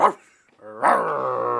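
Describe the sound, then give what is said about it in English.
A person imitates a dog: one short, sharp bark, then after a brief pause a louder, drawn-out howling bark held for about a second. “Oh, what a good boy.”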